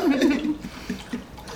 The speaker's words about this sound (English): This is not an episode if it doesn't start off with you slurping in the corner.